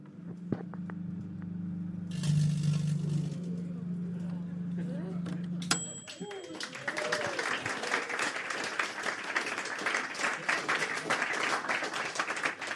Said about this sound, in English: So I'll turn on the microwave. This should cause lots and lots of electric currents to flow inside the crisp packet. And that might make it a bit warm.